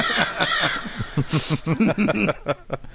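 A crow caws loudly and harshly several times in quick, uneven succession, played as a sound drop, with no voices over it, filling about three seconds.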